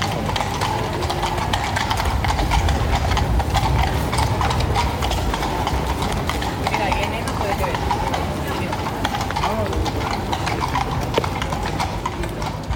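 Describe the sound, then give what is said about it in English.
Police horses' hooves clip-clop steadily on a hard road surface, a continuous rhythmic clatter over a dense hum of traffic and engine noise, with voices talking faintly underneath. “But here's a lovely sound of horsey hooves.”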